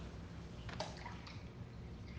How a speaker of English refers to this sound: Let's see. You pour into this cup.